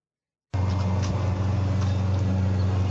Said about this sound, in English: Look at that truck.